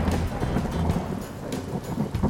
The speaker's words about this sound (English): today we are in beautiful St. Augustine, Florida, the Sunshine State, where ironically it's raining. What a better thing to do than write a podcast episode between lightning strikes.